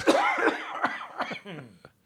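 A loud burst of coughing, several harsh, voiced coughs in quick succession over about two seconds, fading at the end. They sound forced, as if deliberate.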